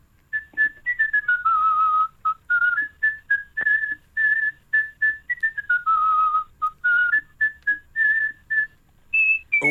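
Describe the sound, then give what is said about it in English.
A loud, clear whistled rendition of the Christmas carol Ding Dong Merrily, performed live on air, made of quick detached notes and long sliding descending runs, with a final high note. No one speaks over it. “As we're approaching Christmas, could you give us a festive favourite, please? How about Ding Dong Merrily?”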